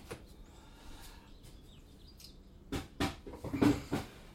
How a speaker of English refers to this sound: Now I close the door to the water reservoir.